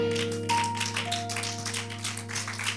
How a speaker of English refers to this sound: Oh, we clapped on that one.